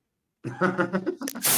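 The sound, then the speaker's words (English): Air escaping from a balloon: a wobbling, squeaky squeal that gives way to a loud, steady hiss of rushing air, with no talking. “Yeah, hey, are you just letting a balloon into the microphone?”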